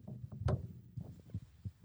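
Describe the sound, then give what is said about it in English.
Mobile phone interference buzzing through a microphone: an irregular run of low throbbing electronic pulses, with one sharper crackling burst near the start. No one speaks. “You gotta move your phone from the mic.”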